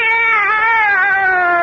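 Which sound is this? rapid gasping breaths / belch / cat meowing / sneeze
cat meowing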